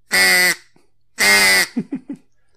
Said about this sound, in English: So duck call to the pod and duck call to everybody out there listening.